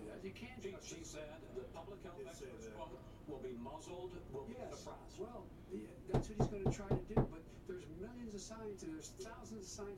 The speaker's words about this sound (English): Someone just knock on your door.